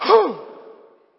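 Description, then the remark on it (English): A single long, deep exhale out through the gut, breathy, starting strong and gradually fading out over about a second with no talking. “Breathe out through your gut.”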